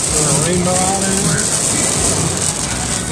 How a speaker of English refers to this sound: It is currently pouring down rain in Springfield. And we have currently a thunderstorm warning and a flash flood warning right now. Let's listen to the rain.